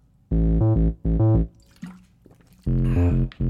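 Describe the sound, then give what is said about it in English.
Cold water being poured and gulped down: three loud, throaty bursts of liquid sound with short pauses between them, plus a faint splash in the middle and no talking. “I'm parched. I'm gonna need a... I gotta wet my whistle.”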